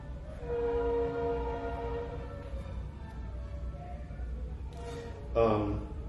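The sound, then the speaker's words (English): A train horn blows a long, steady chord over a constant low rumble, then fades, followed by a brief louder burst of noise near the end. “Okay, some auspiciously timed choo-choo train horning.”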